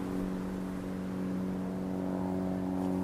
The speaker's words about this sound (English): A single engine, singing a quiet, sweet sound, and approaching directly on course.